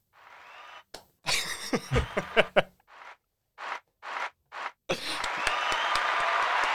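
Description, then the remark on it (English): A burst of audience applause fills the final seconds, a dense crackle of clapping, preceded by a vocal cheer and a few whooshing bursts of noise. “Can we get a round of applause first?”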